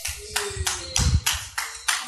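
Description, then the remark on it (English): An audience claps in unison, a steady, even beat of about seven sharp claps over two seconds, fairly loud, with a low hum underneath and no talking. “If you can't speak, just clap.”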